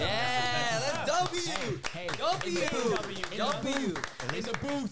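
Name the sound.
people clapping hands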